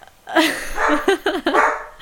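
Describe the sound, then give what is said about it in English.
Two dogs barking at something, a quick run of four or five sharp, high-pitched barks in an uneven rhythm, loud and clear with no talking over them. “It's Olive and Luna. Barking at something.”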